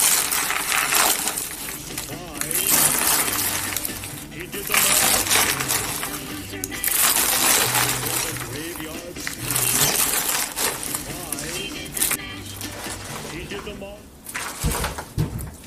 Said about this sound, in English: So we're gonna drizzle that all the way across the top of our munch mix. And then we're gonna stir to completely coat the munch mix.